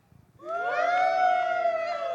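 Several voices join in a loud, sustained cheer on a count of three as a vote, a rising 'woo' that swells after a brief quiet moment and holds steady for nearly two seconds.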